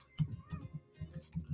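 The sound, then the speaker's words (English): Quick, uneven clicks of typing on a computer keyboard, soft, with a brief pause midway before the keystrokes resume. “I'm typing it right here.”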